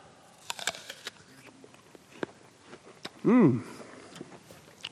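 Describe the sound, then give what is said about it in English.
Someone bites into a crunchy, juicy red-and-green apple: a run of sharp, crackly crunches and chewing clicks, then a brief loud hummed, voiced tone, followed by softer chewing. “Bear with me, I'm about to take a bite.”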